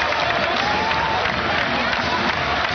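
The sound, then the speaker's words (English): A dense, steady roar of Rutgers football fans at Rutgers Stadium: many hands clapping blended with cheering and shouting voices, loud and continuous with no breaks. “I hear nothing but clapping.”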